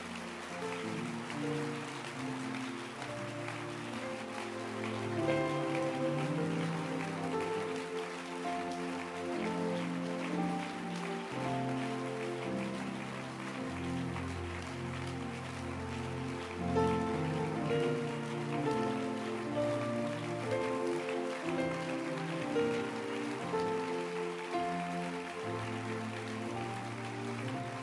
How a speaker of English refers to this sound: But if you know Jesus, then let your hand clap be loud. It suits his sorrows. Keep clapping.